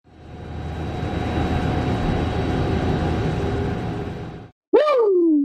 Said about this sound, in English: The plane took off.